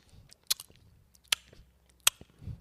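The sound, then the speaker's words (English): Someone imitates loud open-mouthed chewing: wet lip smacks and three sharp, evenly spaced clicks over about two seconds, with soft mouth noises between them and no talking. “Chewing loudly. And if it's even worse, if they chew with their mouth open.”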